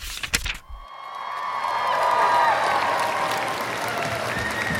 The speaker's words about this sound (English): Let's just head right in there to screaming fans. Let's do it.